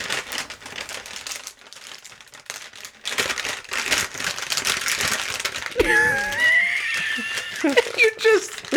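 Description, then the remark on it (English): Steady crackly crinkling of a plastic bag of cough drops goes on for several seconds in uneven bursts, then a rising, squeaky voice and laughter break in over the rustling. “fingering this bag of cough drops right now.”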